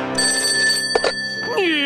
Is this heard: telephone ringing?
yes